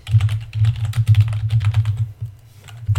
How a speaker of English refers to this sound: Excuse the typing in the background.